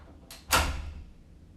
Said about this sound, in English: Oh, he just closed his door. Or I don't know if he left.